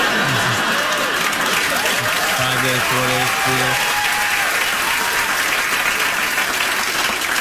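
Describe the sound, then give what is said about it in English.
A studio audience applauds steadily after a joke about New Year's resolutions and the CDC's COVID rules, a dense wash of clapping that holds at an even, loud level throughout, with a few short whooping cheers rising out of it early on. “When that joke works on the Tonight Show with a crowd, making a joke about the CDC making up the rules as they go along, you've completely lost all authority to make any decisions.”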